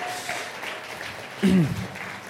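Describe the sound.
Steady audience applause at a Vine Life church service, a dense crackle of many hands clapping at moderate volume, with a brief voice rising over it partway through.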